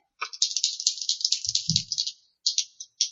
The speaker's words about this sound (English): Wait, does that mean roll two dice at once? Yes. Okay.